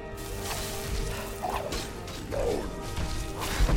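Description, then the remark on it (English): A Dawnbreaker magic sword explosion in video game combat against a Draugr Scourge: a dense, noisy clatter of crashing and mechanical sounds, with two brief swelling bursts partway through and a sharp hit near the end. “Got him. With that sweet, sweet Dawnbreaker explosion.”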